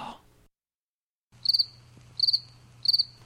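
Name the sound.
cricket chirping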